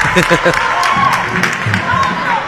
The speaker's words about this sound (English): So for a brief moment, we had silence here in the gym. I could actually hear myself talk. We're struggling tonight to be heard over the crowd, but we're doing the best we can.